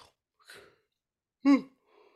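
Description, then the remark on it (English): A brief voiced yawn, a short breathy rise and fall preceded by a faint intake of breath, with quiet breathing trailing off afterward. “Oh, I got the yawns.”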